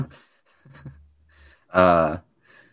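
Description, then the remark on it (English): A dog snoring under a desk: a low, rumbling breath gives way to one loud, throaty snort lasting about half a second, with soft breathy sounds before and after. “Somebody's dog is snoring. It's fine. He's right under the desk.”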